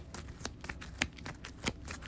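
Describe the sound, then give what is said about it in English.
A deck of cards being shuffled during a card game as the remaining cards are shuffled back in, a steady flurry of crisp riffling snaps and flicks over about two seconds, with no voices. “And then I'll shuffle the rest back.”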